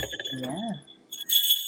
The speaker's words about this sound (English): These are the bells from my sleigh. Can you see them?